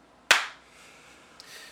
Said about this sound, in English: Clap sync in 3, 2, 1.